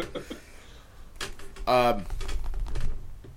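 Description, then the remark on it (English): Dice clatter and rattle across a hard tabletop in a quick burst of sharp clicks, the second dice throw of a game, with a voice briefly sounding in the background. “Dice throw number 2.”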